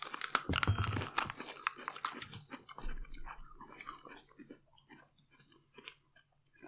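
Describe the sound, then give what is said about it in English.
A loud crunchy bite into a chili pepper, followed by several seconds of wet, rhythmic chewing that gradually grows softer, with no talking. “Because I think it's time we had our first chili.”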